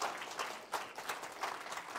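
An audience gives a clap offering of praise, clapping steadily in a dense wash of overlapping hand claps with a few sharper bursts, fairly loud and sustained throughout with no voices over it.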